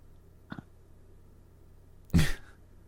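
A loud, rough honk of a nose being blown straight into the microphone, a harsh breathy blast lasting under half a second, preceded by a faint short sniff-like puff.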